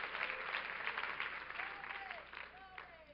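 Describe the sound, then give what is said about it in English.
A seated audience applauds in praise of God, with steady, dense hand clapping that holds fairly even across the whole stretch, with a few faint voices rising underneath toward the end. “God is so good, and if you know He's good, why don't you clap your hands as you're seated in the name of Jesus.”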